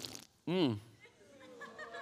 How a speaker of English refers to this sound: You hear that slurp? It's better with air, all right? Don't judge me. It's better with air. Diet Dr. Pepper's good, man.